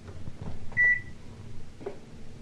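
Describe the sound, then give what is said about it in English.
A washing machine being switched on gives a single short, high-pitched electronic beep that stands out clearly over a low, steady background rumble. No one speaks. “That's my washing machine, it sings.”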